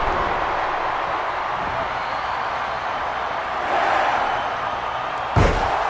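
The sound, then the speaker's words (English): A steady crowd roar, then near the end a single loud, sharp crash rings out as a wrestler slams down onto a chair. “Oh, drops right on the chair.”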